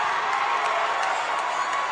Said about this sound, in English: He's got the Lebanon fans clapping their hands. Student section all in white to my left standing.